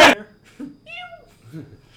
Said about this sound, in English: I think there's litter kittens. Yeah, it's a cat.